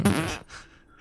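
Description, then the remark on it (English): A small, buzzy fart noise lasting under half a second, clear, trailing off into a faint airy hiss with no talking around it. “You attempt to cast the spell light, but nothing but a little fart gets released.”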